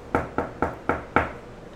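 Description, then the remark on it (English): Five firm knocks on the left-hand door at the end of a long hallway, evenly spaced in a steady rhythm, clear with a short hollow ring after each, then quiet. “So, the door on the left. Mm-hmm. I'm going to knock.”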